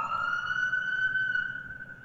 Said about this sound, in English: Hold for another siren.